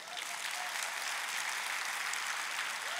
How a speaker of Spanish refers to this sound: Date un aplauso.